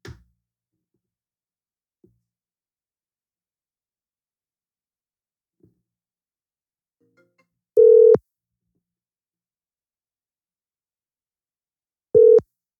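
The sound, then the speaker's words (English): A phone line rings out twice as a man calls his wife, each ring a steady electronic tone lasting about half a second, separated by a long quiet gap with a few faint clicks. “I think I'm going to call my wife.”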